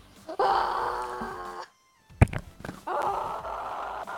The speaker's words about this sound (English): I dare you to scream.